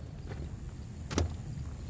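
Quiet outdoor ambience recorded at sunset just north of Chase Fishing Lake, by two radio towers, near Strong City, Kansas: a steady low rumble and soft airy hiss, broken once by a brief, sharp noise partway through. No one speaks.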